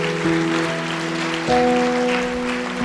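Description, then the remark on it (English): A crowd claps steadily for Jesus, a dense wash of applause that holds throughout while sustained organ-like keyboard chords play underneath and shift partway through. “Yeah, come on, give Jesus a big round of applause.”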